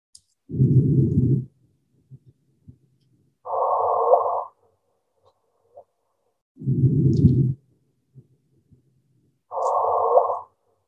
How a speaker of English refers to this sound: And these increases in frequency are known as chirps, because some events that generate gravitational waves sound like a bird's chirp. So here we go. Let's listen to the animation.